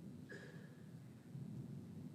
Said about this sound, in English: Man. It's an intense thunderstorm. Can y'all hear me okay?